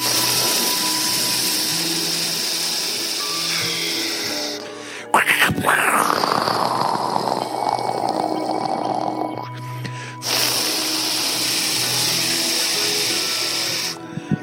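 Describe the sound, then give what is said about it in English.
A voice imitates rain in a thunderstorm with a steady, breathy hissing and sputtering that runs for about fourteen seconds, swelling into a louder, rougher burst partway through before settling back. “Then the rain comes.”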